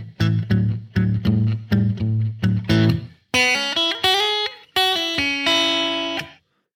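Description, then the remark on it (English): Electric guitar plays a blues riff with hammer-ons: a chugging run of low, rhythmic repeated notes, then brighter sustained higher phrases that slide upward. Loud and clear, no voices. “Back to the hammer-ons.”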